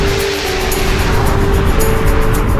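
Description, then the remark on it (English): A car engine hums steadily under loud road noise, its droning tone dipping and shifting briefly as a gear is changed with a long, floor-reaching gear stick, with no one talking. “Gear change in this car. It's van-like, but I mean that in a good way.”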